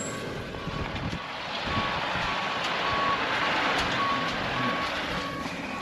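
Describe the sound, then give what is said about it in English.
A large truck's engine rumbles steadily and loudly while a high backup alarm beeps at a regular, repeating pace as it reverses, with no voices present. “So I want to talk about the phrasal verb missed out once this truck goes by. It might be a little too loud.”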